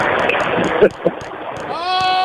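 A horse whinnies close by near the end, a sustained quavering call rising out of a rough, noisy background of rustling and clatter.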